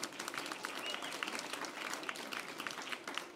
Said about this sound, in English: yeah, it's a good place to clap. I'm okay with that.